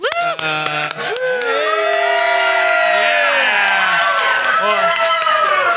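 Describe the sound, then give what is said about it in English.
A loud audience at a cosplay panel cheers steadily, with high whoops and shouted voices rising over a dense crowd roar and scattered clapping, sustained throughout. “I was expecting a cheering for them.”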